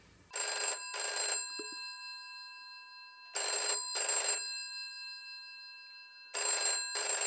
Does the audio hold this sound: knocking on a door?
no